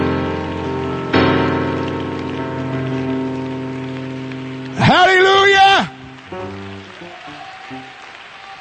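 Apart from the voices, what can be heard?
audience clapping hands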